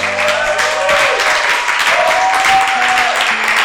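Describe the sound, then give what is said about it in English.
An audience at a church sermon claps loudly and steadily for the Lord, a dense wash of many hands without pause, with faint sustained organ or keyboard tones running underneath. “Give the Lord a mighty clap of it. It can be better than this.”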